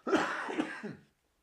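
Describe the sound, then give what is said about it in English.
A short, raspy fit of coughing, several rough hacks running together for about a second, with a throaty, clearing quality and no talking. “I got a cough. My apologies.”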